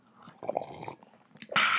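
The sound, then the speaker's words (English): Sipping of hot tea: soft wet mouth noises and a couple of small slurps, ending in a louder, airy slurp. No one speaks. “We're sipping the tea”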